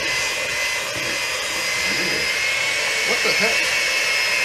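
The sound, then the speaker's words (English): A blender motor runs steadily, a dense whirring roar with a thin high whine held at constant loudness, while a faint voice murmurs briefly underneath toward the end. “Was somebody gonna tell me I only had one blender in there?”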